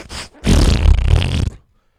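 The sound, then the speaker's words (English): A loud, sputtering fart noise lasting about a second, preceded by a short puff of a similar buzz, then silence. No talking can be heard. “The guy's farting.”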